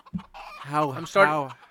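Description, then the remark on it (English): A chicken clucks, a short chirp followed by two drawn-out, throaty squawks in quick succession, loud and clear with no talking around them. “This is a chicken.”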